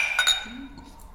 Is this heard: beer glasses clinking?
yes